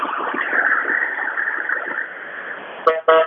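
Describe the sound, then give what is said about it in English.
Heavy vehicle rumble fills the scene, then a bus evacuating people from a besieged old quarter gives two short, loud horn blasts at the end as it passes into a receiving center next to the front line, one brief toot followed by a slightly longer honk. “Excuse me, bus is passing through.”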